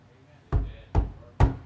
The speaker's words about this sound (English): when we knock on someone else's door